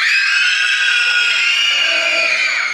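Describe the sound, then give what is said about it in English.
A crowd of children aged 10 or under in a church screaming at the top of their lungs on a count of three, a loud, sustained, high-pitched wall of overlapping shrieks lasting a few seconds without pause. “If you're 10 or under, right now, on the count of three, I want you to scream on the top of your lungs.”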